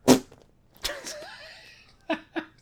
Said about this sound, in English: So, if you heard that, they now know I record and they set in whoopee cushions on my chair here.